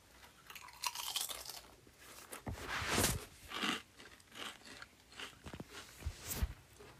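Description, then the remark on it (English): Loud, crisp crunching of a pickle-flavored, Pac-Man-shaped chip being chewed, a rapid series of brittle cracks and crackles in irregular bursts, with no talking. “I have my Pac-Man-looking chip.”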